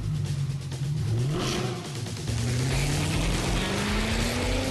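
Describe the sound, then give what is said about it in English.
The engine of a Mercedes-AMG GT four-door coupe revs hard, its pitch climbing, briefly dropping around a gear change, then rising steadily again as the car accelerates. The roar is loud and continuous, with no talking. “The GT four-door coupe from Mercedes-AMG, because life is a race.”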